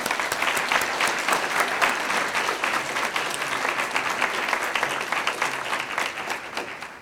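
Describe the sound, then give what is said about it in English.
An audience applauds steadily for several seconds, a dense, even patter of many hands clapping at once with no voices rising above it, fading slightly at the very end. “And I'm really sorry she's not here so that we can, you know, applaud her together.”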